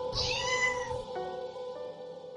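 A cat lets out a single drawn-out meow, fairly loud, rising then sliding down before fading into a quiet tonal hum with no talking.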